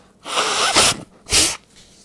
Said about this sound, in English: Let me blow my nose here. My apologies. I'm really trying not to be overly sinus oriented today.